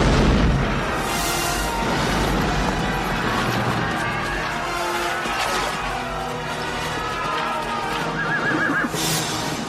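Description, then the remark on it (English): Cannon, fired by a gunner with a linstock, blast amid crashing masonry in a dense, continuous battle din, with loud bursts near the start and end and horses whinnying through the chaos. “And the nimble gunner, with linstock now, the devilish cannon touches, and down goes all before them!”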